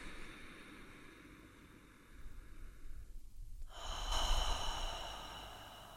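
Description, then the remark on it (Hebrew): A slow, deep breath drawn in and then released in a louder, airy exhale during a guided heart-focused breathing exercise, with no talking. “אז כמה נשימות לשם?”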